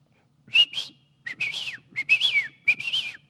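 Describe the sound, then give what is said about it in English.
A person whistles a trilling, warbling tune in imitation of a canary's song, with rising and falling bright notes in several quick bursts separated by short pauses. “And as I whistle to the canary, I teach it to sing.”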